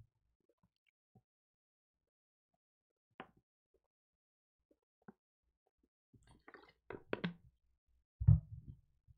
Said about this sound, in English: Before I give you guys my college football playoff rankings, I got to take a sip of water real quick.